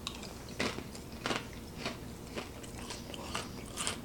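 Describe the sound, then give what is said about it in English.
Soft, wet biting and chewing on Vienna Bites, small hot-dog-like Vienna sausage bites, with about seven moist, squishy chomps spaced unevenly over a low background hum. No one speaks. “Of course, let's try the Vienna Bites.”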